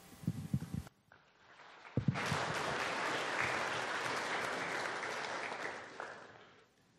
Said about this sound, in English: Yeah, he did a good job. You clapped for him. I'm a little jealous.